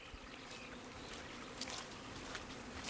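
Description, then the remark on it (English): A steady, soft hum of many Manuka honeybees buzzing over a field at the edge of a forest, a continuous low drone with faint brief flickers as individual bees pass, with no voices. “It's really too early to stop somehow, so I take a mental photograph and then hoof up the hill, finally spitting out of the forest onto a field and happy, buzzing Manuka honeybees.”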